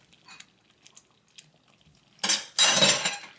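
A few soft, scattered clinks give way to two loud, broad scraping bursts as drained beef dices are stirred into a pot with the heat turned off, with metal utensil sounds and no talking.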